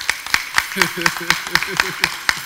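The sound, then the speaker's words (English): Rhythmic clapping as a round of applause for a poet, with sharp, evenly spaced claps, about four per second, keeping a steady beat, while a voice murmurs faintly underneath partway through. “So y'all give a round of applause.”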